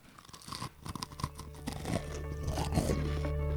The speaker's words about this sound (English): There's a nice crunch to the cookie. Got some sugar on the top. I rolled them in granulated.